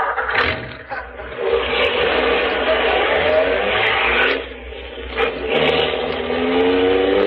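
A car engine roars and accelerates steadily as it chases another car up ahead, its rising pitch sweeping upward as it speeds along, loud, with brief dips before revving hard again.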